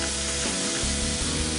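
Chicken sizzles steadily in a greasy frying pan just after being flipped, a dense, crackling hiss that fills the short clip at an even loudness, with faint pops and spatters scattered through it and no voices.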